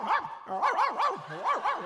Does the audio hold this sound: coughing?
no